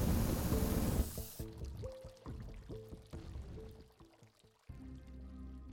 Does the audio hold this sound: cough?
no